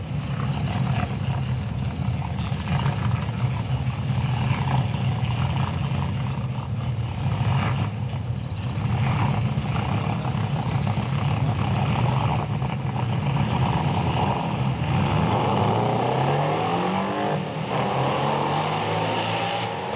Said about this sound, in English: Here is what a Volkswagen looks like at the drags with a supercharger.